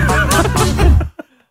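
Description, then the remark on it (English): A brassy, honking synth riff from a 1966 song, with wavering, nasal tones that resembles a swan honking, loud and continuous for about a second before cutting off with one short final blip. “Sounds a bit like a swan honking.”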